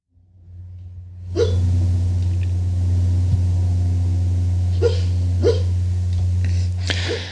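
A small dog, a pup named Rocco, lets out a few soft, muffled yips and huffs in its sleep while dreaming, spaced irregularly over a steady low background hum.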